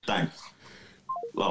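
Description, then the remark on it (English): A phone call hanging up: three quick electronic beeps stepping down in pitch, fairly soft, with breathy talking before and after them. “Hang up, and I'm going to play it right now, and then you'll hear it.”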